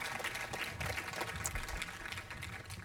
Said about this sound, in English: Hey friends, can we give a round of applause to the people who made this outdoor thing possible? Can we also give a round of applause to God who has made this world a sanctuary? Come on.